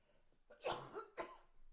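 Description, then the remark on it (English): Two raspy coughs in quick succession from a person still recovering with a lingering cough, the first heavier and followed by a short rough catch, the second sharper, with quiet breathing before and after. “I'm still in that stage of still got the cough going on.”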